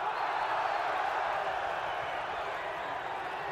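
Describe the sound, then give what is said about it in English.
A large British boxing crowd roars continuously during the first round of the Hagler–Minter fight, a dense wash of many voices shouting and cheering at a steady, loud level with no single voice standing out. “You'll hear this British crowd roar with every exchange, particularly if one exchange favors Minter.”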